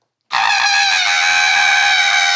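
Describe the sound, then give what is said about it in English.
A voice mimics a falling stork's scream: after a moment of silence, one loud, high-pitched shriek bursts out and holds steady for about two seconds, with no talking. “You're from a distance and all you hear is the stork screaming on his way down.”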